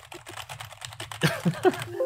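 Rapid, fairly loud clacking of a mechanical keyboard as someone types a search, a dense run of sharp key strikes with short vocal sounds mixed in toward the end.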